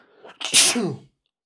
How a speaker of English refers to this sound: That was a good sneeze.